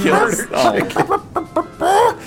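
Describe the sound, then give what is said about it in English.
A person imitates a clucking chicken, a loud run of choppy, uneven clucks and squawks ending in a drawn-out cackle. “Murder chicken.”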